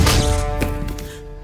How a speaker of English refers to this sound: Sleep it off, big guy. What did you do? I knocked him out a little bit.